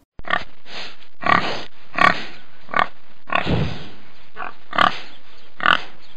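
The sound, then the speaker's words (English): A pig oinks and grunts repeatedly in short, loud bursts with brief gaps, with no talking over it. “It's a pig! Can you oink like a pig?”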